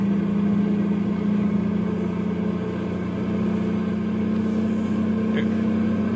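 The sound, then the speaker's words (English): A heavy truck loaded with nitroglycerin starts its run downhill in the mountains at dawn. Its engine drones loudly and steadily, the low hum holding an even pitch throughout with a faint rattling texture on top. “his truckload of nitroglycerin is heading for Landslide. It's dawn now as Les starts his run downhill”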